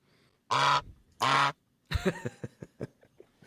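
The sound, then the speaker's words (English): A goose honks loudly twice, two long nasal blasts, then breaks into a quicker run of shorter, choppy honks and squawks that gradually fade out. “Got to get the goose in.”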